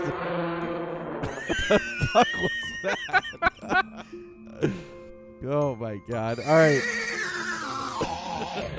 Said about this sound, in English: I was wondering what a slow-motion elephant would sound like.